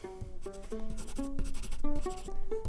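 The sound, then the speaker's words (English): Quick, scratchy pencil strokes across paper as a drawing is made, fairly steady, with a soft tonal melody playing in the background throughout. “Pencils up, let's draw.”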